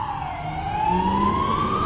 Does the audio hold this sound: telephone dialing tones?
no